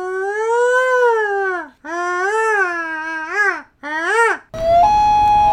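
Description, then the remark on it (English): A person's voice imitates a loon call with three long, wavering wails that swoop up and down in pitch, followed by a short burst of hissy noise with a steady tone. “I did not believe that loons sounded like women screaming.”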